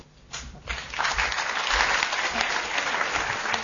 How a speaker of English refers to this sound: It's been interesting to observe how the clapping has become more enthusiastic as the evening goes on, which is not the normal pattern, so that's a tribute to our speakers.